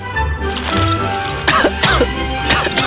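A person coughs several times in harsh, throaty bursts, loud, over a steady low background hum with no speech.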